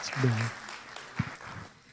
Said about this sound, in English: Can we clap? Can we make them feel extra special at home this morning?